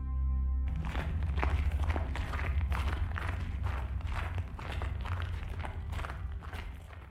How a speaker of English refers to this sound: His footfalls crunched the snow beneath them. The frozen ground, swaddled in its diamond-dusted blanket, cracked, scattering small echoes into the fresh-born sky.